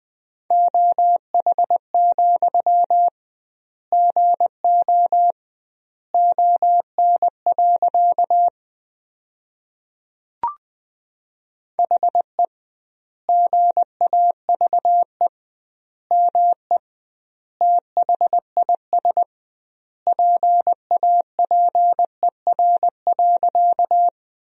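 Morse code sent at 20 words per minute with double word spacing, sending sentences made from the 500 most common words: a steady mid-pitched beep keyed into quick dots and dashes, grouped into words with clear pauses between, plus one brief click midway. No voices.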